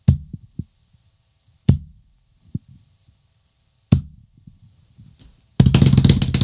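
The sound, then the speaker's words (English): Soft, low heartbeat thumps pulse at a slow, steady pace, punctuated by sharp clicks, before a sudden loud, dense burst of sound crashes in at the end. “It's a heartbeat.”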